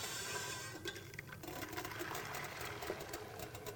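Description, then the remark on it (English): Liquid containing cornstarch poured into a hot pan on a burner set to high sets off a loud, steady sizzle, a crackling hiss that runs unbroken for several seconds with no voices. “Everything's on high. I'm going to pour this in.”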